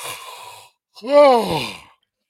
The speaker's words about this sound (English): Whoa. That's me yawning because I'm exhausted.